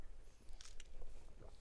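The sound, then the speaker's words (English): A quiet sip of water taken during a sermon: two brief, wet slurping bursts in quick succession over a soft low rumble, with no one talking. “I mean, as a matter of fact, I'm gonna take a sip right now.”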